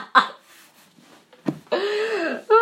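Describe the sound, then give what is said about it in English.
A sudden sharp gasp, then a drawn-out voiced exclamation that slides down in pitch and a brief final vocal burst, with a short throaty sound at the start. “Oh, I just gasped.”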